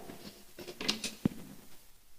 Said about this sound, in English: What the? Now my printer's just making weird noises. How interesting.